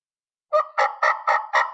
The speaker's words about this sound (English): We did not have good turkey calls. This is the first back east call I'd ever tried. And I yelled to it one time, and it went.